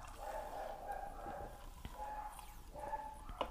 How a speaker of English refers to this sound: And oh my gosh, my dogs are barking so much. They hate it when there's people outside.